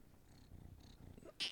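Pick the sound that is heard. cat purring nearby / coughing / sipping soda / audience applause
cat purring nearby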